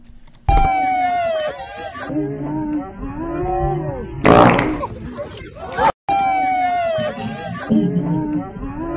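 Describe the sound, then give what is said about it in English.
Loud, drawn-out buzzy fart sound effects with warbling pitch, one repeated after a short noisy burst and an abrupt cut, edited into slowed-down meme footage of a man falling off his bike. “A lot of fart talk we today.”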